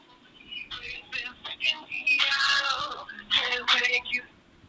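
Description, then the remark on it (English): A mobile phone ringtone plays for an incoming call: a chirpy, bright electronic melody in quick tonal bursts that swells and continues for several seconds, sounding alone without talking over it. “Lamest fucking ringtone ever.”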